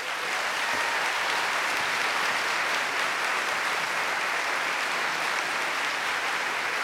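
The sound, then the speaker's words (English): An audience at Town Hall applauds steadily, welcoming syndicated columnist Denis Moynihan, a dense wash of many hands clapping at an even, sustained loudness for several seconds without a break or any voices standing out. “Well, please, hold your applause.”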